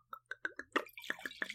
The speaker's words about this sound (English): I didn't pour as much as that sounded like I did.